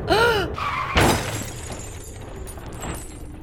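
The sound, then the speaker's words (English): A brief high screech gives way to a loud crunching impact of one car slamming into the back end of another, followed by shattering and scattered debris settling into a low rumble. “I mean, you crashed into us.”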